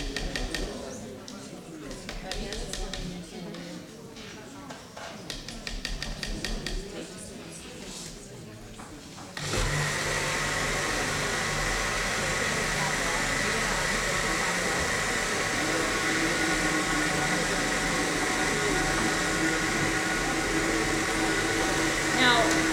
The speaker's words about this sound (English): For some reason, in these recipes, when you put your food yeast in, it thickens your recipe up, and again, it's hard to run the blender. So you just stop it and try it again, and then it will go.